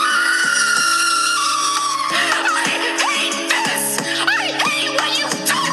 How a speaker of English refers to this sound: I am going to spend the next minute screaming, because that is what the trans genocide in this country has brought me to.